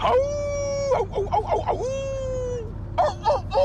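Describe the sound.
A person imitates a wolf howl with two long, steady, high-pitched vocal tones, each followed by short, choppy voiced bursts that break up the sound.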